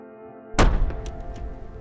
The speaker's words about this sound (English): And this kid looks right in my face and slams the door shut.